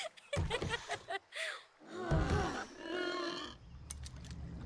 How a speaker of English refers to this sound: What? Why did you gasp? That didn't sound like a good gasp.